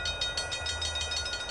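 A short train sound effect plays on its own: a steady rumble under a fast, even rhythmic clatter, fairly loud, with a faint high tone running through it.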